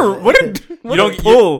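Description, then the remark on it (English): Someone imitates a dog barking in a cartoonish voice: a couple of loud, gruff yelps with a short pause between them, and no other talking. “you just pulled out, what's his name? Napoleon from the Aristocats”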